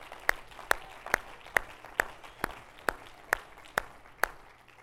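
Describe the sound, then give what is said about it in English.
An audience claps hands together in a steady, even rhythm, about two sharp claps per second, with no voices over it. “If you believe that today, would you clap your hand?”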